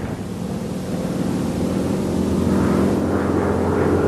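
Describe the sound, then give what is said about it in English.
A GB propeller racing plane, flown in 1931 by racing pilot Lowell Bales to challenge the speed record for land planes, drones at speed, its engine a steady, loud buzzing roar with a deep throb that swells slightly toward the end, heard alone without voices. “In 1931, Lowell Bales, a racing pilot, took one to challenge the speed record for land planes held by the French at 278 miles an hour.”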